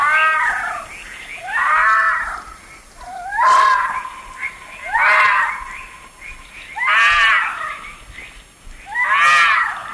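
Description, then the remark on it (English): A wild animal lets out a series of six loud, wavering screams that sound eerily like a woman shrieking, repeating every second or two, with no talking. “you can look it up, the screaming woman yell”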